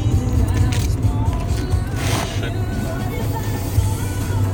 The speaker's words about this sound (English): Aw, oh, motherfucker. This traffic's a bitch.